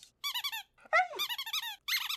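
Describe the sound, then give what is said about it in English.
An Ivanka squeaky toy being squeezed over and over by Mahler the dog, three loud bursts of rapid, high-pitched squeals with short pauses between them, and no voices. “I see, Mahler, you have brought me a squeaky toy.”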